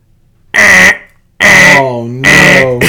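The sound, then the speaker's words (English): A car alarm blares in loud, repeated harsh blasts, roughly one every second, with a wavering tone sliding between the bursts. It goes off on a street at 12:30 in the morning after a man opens the door of a car with the keys locked inside. “The whole street, the car alarm's just going off.”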